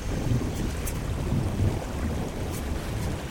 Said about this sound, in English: I think it's a ground quake.